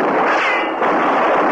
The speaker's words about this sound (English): I'll see about the man I shot.